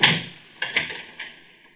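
A key works a door lock: an initial scrape, then a pair of quick metallic clicks and a later clunk, crisp and moderately loud with no voices.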